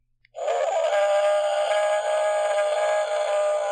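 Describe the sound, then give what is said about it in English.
A long, loud electronic Bigfoot howl from a toy Bigfoot sound machine starts abruptly after a brief click and holds steady for over three seconds, a wavering, harmonically rich, moaning tone with no talking over it. “This is our emergency Bigfoot sound machine.”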